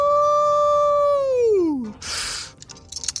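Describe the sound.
A single long, loud howl holds a steady tone for over a second, then slides down in pitch and breaks off into a short rushing, hissing burst.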